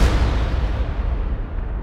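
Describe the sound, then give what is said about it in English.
A heavy cannon blast, fired by a gunner igniting the cannon with a torch in hand, rolls out as a deep, sustained rumble that gradually loses its sharper edge over a couple of seconds, loud, with no voices. “So, see a nimble gunner, torch in hand, igniting the devilish cannon, and down goes all before them.”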